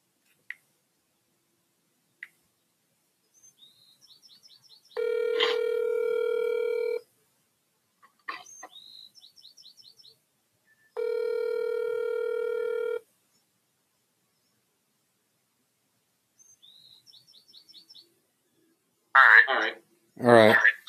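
A phone call connecting: short electronic chirps, then a steady buzzing ring tone sounding twice with a pause between, followed by a brief loud burst of garbled sound at the end.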